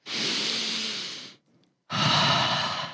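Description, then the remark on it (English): A deep, slow belly breath drawn in for over a second, the stomach expanding, a short pause, then a long airy exhale as the stomach pulls back in, clear with no talking. “Instead, you're breathing in, a stomach expands out. When you breathe out, your stomach comes in and you suck it in.”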